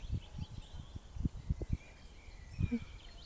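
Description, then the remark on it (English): Faint bird chirps and thin song drift in the background of a quiet outdoor scene in a park in front of windmills, while low thumps and rustles, like footsteps or handling, are heard. “You hear the birds.”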